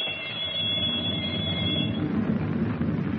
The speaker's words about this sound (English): In the control compartment, he holds Captain Denning at gunpoint while the torpedo firing alarm bell rings through the steel hull.